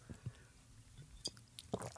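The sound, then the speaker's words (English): A quiet sip of Hennessy liquor followed by a wet gulping swallow, with small mouth and throat noises spread over a couple of seconds and no talking. “That was a big sip. I could hear that swallow.”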